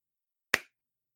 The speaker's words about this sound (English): I think I start to slow clap.